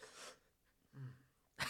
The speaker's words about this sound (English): I don't mean to cough.